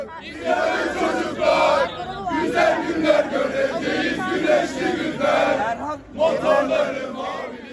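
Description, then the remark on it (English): Several hundred mostly young people in front of the CHP headquarters in Ankara, Turkey, on election night chant hymns and sing the national anthem in unison while waving Turkish flags, voices rising and falling in steady rhythmic phrases, loud and continuous, with a brief lull before the chanting resumes. “Several hundred, mostly young people, were still there, waving Turkish flags, chanting hymns and the national anthem.”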